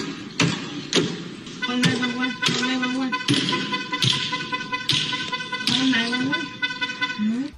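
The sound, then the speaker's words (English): About nine hard hammer blows strike a self-driving car in San Francisco at a steady pace as a man attacks it, each a sharp metallic bang, while a loud car horn blares continuously underneath. “that was the sound of a guy in San Francisco attacking a self-driving car with a”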